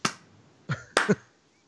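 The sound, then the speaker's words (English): Four sparse, soft hand claps land at an uneven, unhurried pace, with no talking: a quiet, half-hearted slow clap. “Low clap.”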